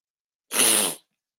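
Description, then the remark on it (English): A single sharp sniffle, a breathy nasal hiss lasting about half a second, fairly loud and heard alone with silence before and after. “I apologize for all the sniffling.”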